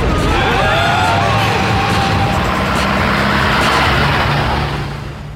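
A taxi's engine roars and revs loudly as the cab races and swerves through busy traffic, with screeching, rushing road noise filling the whole few seconds before it eases slightly at the end.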